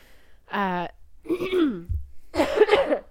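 Someone clears their throat and coughs in three short, raspy bursts separated by brief pauses, with no talking around them.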